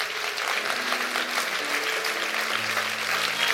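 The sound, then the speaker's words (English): An audience claps steadily for several seconds, a dense, sustained wash of many hands, with faint sustained tones murmuring underneath. “You, clap your hands for that.”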